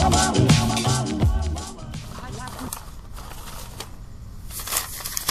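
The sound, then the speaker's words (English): Paper crinkles and crackles steadily for several seconds, fairly loud, with a brief tonal, voice-like sound mixed in near the start. “Paper crinkling brought to you today by the letter F and U.”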